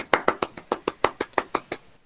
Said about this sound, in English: Slate golf claps.